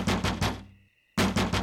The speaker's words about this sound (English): This misterio started this evening, just as a full moon rose over el barrio de Guadalupe, and our amigo Javier started banging on our clubhouse window.